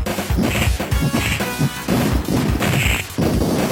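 Rapid, punchy retro 16-bit video game punching sounds from the Sega Genesis version of an arena game, resembling Capcom's Street Fighter sound library, land in quick succession, crunchy thwacks and smacks stacked over a loud, busy backdrop with no talking.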